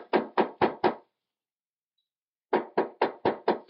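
Loud knocking on the wooden door of a study above a garage: four sharp raps, a pause of about a second and a half, then six more evenly spaced raps. No voices.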